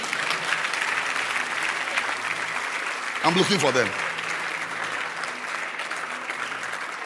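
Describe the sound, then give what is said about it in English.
An audience claps steadily for a choir member, a dense crackling wash of many hands, while a voice briefly speaks over the applause partway through. “Clap for her.”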